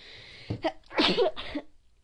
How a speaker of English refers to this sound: I have the weirdest sneezes, sorry. I just coughed after I sneezed, and that usually doesn't happen.